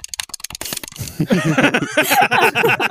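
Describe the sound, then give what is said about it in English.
A voice imitates frustrated PS5 players heard over voice chat frantically mashing the X button on their controller while panic dodging: a burst of rapid, sharp clicking taps, followed by a denser stream of quick, choppy vocal sounds. “People who are like trying to like panic dodge and just smashing on their on like the X button or whatever.”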